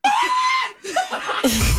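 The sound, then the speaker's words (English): A loud, shrill, very high-pitched scream by a person held for a moment, then a brief pause and more wavering shrieks, with no talking. “And I screamed the highest pitched scream.”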